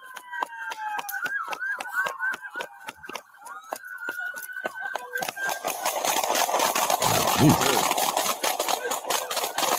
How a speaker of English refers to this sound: Damn. Damn. Damn, that was a lot of shots. He dumped the mag on him. Jesus.